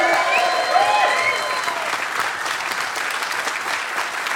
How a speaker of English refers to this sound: First of all, can I get a big round of applause to my co-host